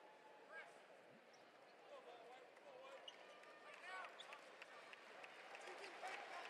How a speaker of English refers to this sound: Gives him a nice little round of applause.